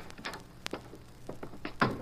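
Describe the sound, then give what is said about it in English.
Several quick, hard knocks on the door of a doctor's office that is part of a house, on a quiet afternoon, spaced unevenly over about two seconds, with the final rap the loudest. The knocking is fairly quiet, and nobody speaks. “And my last patient had just gone, and then somebody knocked on the door.”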